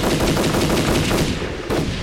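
Rapid, sustained automatic gunfire rattles out in a dense, continuous burst of sharp reports, loud throughout with barely any gaps, briefly dipping before another crack near the end.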